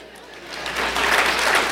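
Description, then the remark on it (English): An audience breaks into applause for the speaker's grown sons who are present, a dense wash of many hands clapping that swells over the first second and then holds steady and fairly loud. “Clap right.”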